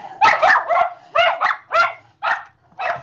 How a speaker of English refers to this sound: Bark, bark, bark. Dude. Sorry about that.